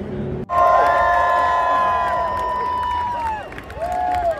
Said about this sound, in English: Crowd absolutely loving it here today. Absolute belter, not a cloud in the sky. And I think the biggest cheer we've heard so far has been for Gunther.